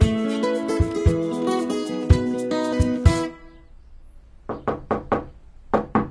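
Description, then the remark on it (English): A short stretch of music fades out, then someone knocks on a front door: four firm, quick raps, a brief pause, and two more. “Please, see who is at the door!”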